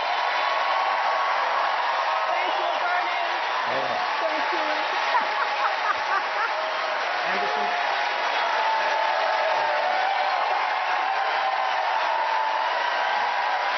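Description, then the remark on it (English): A large audience applauds steadily for about fourteen seconds, a dense, even wash of clapping with scattered cheers and voices mixed in, holding its loudness throughout. “It's obviously very popular in this crowd.”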